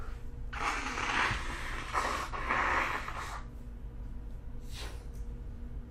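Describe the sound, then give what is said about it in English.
Someone blows their nose in three long, forceful, honking bursts, followed by a brief sniffle near the end, with no talking. “I'm going to have to blow my nose.”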